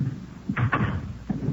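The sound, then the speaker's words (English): A front door opens and swings shut, with a pair of quick thuds and clicks, then another softer knock moments later over a low rumbling background. “Front door open?”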